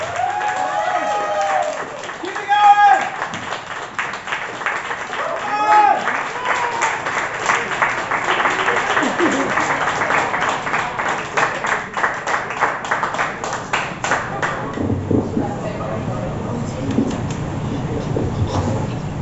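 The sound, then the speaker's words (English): Sustained applause from a poetry slam audience for a poet, with dense, steady clapping and scattered cheers and whoops rising above it, continuing for about fifteen seconds before thinning as a voice begins. “Applaud the poet. Keep that applause going.”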